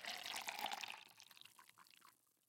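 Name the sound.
coffee being poured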